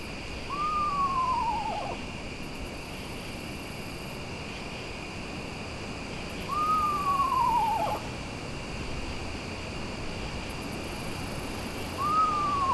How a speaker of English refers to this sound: The screech owl is pretty social. You can hear when you find them at night, sometimes you'll hear pairs or even more whinnying between each other at a distance, communicating.